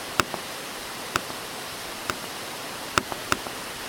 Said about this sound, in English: We're coming close to the first jump. We're going into the waterfall.